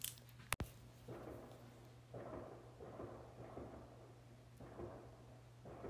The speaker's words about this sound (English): I don't know, can you guys hear that? They're letting off fireworks in my neighborhood because of the Victoria Day weekend.